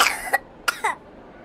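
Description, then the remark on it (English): A harsh, rattly cough from a sick girl who was asked to cough: one drawn-out hack, a short pause, then two quick rough coughs in succession, with no talking. “And when he asked her to do a cough, a terrible rattly sound came out.”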